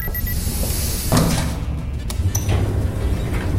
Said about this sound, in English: Doors closing.